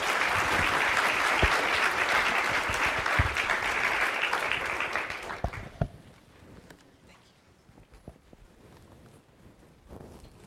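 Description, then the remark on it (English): A large crowd claps loudly and steadily for several seconds, welcoming Dr. Wayne Grudem as he comes to teach, then the applause fades quickly into quiet with a few scattered claps and small noises. “Wayne Grudem a warm round of applause and welcome as he comes to teach us now.”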